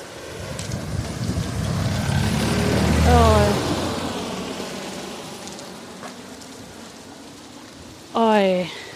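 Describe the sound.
A car approaches and passes by, its broad rushing noise swelling to a peak and then fading away over a steady rain-like hiss, with brief bits of voice.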